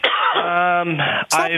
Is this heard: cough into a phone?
yes